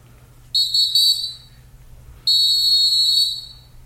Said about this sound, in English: That whistle, man, every week.